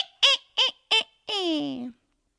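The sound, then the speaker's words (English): A person's voice imitates a witch's cackle: three quick, shrill, nasal bursts followed by one drawn-out note that slides downward, fairly loud, with no other talking. “The next one is to be a witch. Give me your best witch cackle.”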